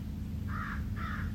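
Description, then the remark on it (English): A crow caws twice in quick succession, two harsh, rasping calls, heard over a steady low rumble of outdoor background noise, in the morning on the shore of Lake Superior in Northern Ontario. “Crows, of course.”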